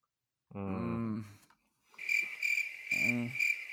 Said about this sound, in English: I was waiting for it. I knew it was coming. I just want to thank everybody for my first crickets. This is exactly what I've been dreaming of my entire life.